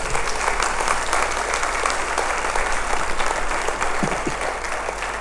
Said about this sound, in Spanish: Aleluya, gloria a Dios. Dale un aplauso al que vive para siempre.